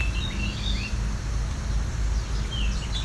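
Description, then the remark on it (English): Thin, high chirps and short warbling phrases from a young bird come and go over a steady, noisy low rumble, with no one talking. “Possible this is a immature bird.”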